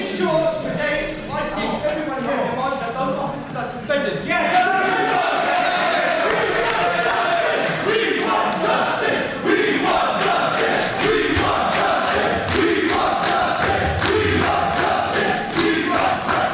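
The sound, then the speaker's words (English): A crowd at a meeting chants loudly and spontaneously in unison, many voices building after a ragged start into a steady, repeating rhythm punctuated by sharp, regular beats like clapping that continue to the end. “At one point, this chant spontaneously came from the crowd.”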